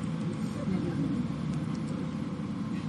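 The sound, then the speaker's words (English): A food truck drives by, heard inside a church worship space, its heavy engine drone steady and loud for the full three seconds, a low continuous roar with a faint hiss above it. “Live streamers, a food truck just drove by.”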